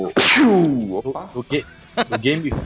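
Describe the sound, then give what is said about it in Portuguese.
A sudden loud sneeze bursts out, its voiced tail sweeping downward in pitch like a zap, followed by someone talking. “espirra tipo arma laser, né?”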